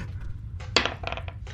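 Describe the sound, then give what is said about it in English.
Dice clatter and tumble across a hard tabletop in a quick burst of sharp, bright clicks, rolled for a deception check and coming up a 5, settling after a few bounces over a low background hum. “Oh, fucking dice.”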